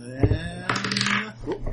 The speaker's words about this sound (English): Nope. Damn it, where'd it go? Yep. This is the smallest place to roll dice ever.